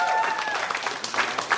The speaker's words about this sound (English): Give him a nice round of applause.